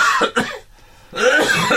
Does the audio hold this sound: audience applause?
no